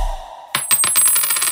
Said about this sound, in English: Drop it. Coin.